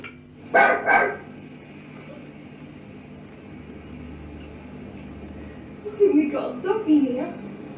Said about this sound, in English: The barking here is quite extraordinary, actually.